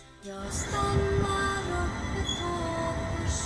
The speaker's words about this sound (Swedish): Så tåget rullar liksom in på perrongen.